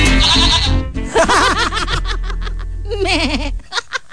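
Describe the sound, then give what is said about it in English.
A person imitates a goat's bleat with a few wavering, nasal vocal bleats in quick succession, loud, with a low hum underneath that drops out near the end. “Kasi pag sheep dapat, Hindi meh. Uh-oh. Goat naman yun.”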